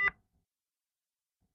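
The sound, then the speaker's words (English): A single short electronic beep from a heart rate monitor tracking heart and pulse rate sounds clearly at the start, then the rest is near silence with no further beeps or talking. “There was a rack of monitoring gear to my right and the beeping sound was coming from the machine tracking my heart and pulse rate.”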